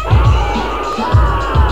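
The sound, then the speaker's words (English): A crowd at the Power 95 Power Party Weekend in Ennis, Texas, screams on cue after a count of one, two, three: a loud, sustained group scream, a dense wall of many voices with low thumping pulses underneath. “Make them all scream something.”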